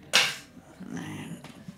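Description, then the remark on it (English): A sharp, loud rip of a beef ragu meal-ready-to-eat ration pouch being torn open, fading quickly, followed by a low murmur and a second brief, quieter tearing crackle. “If I tear this and it pours beef ragu all in my lap,”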